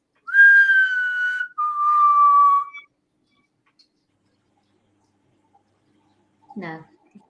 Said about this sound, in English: I'll do it one more time. Go. Can you copy this whistle?